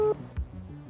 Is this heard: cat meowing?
no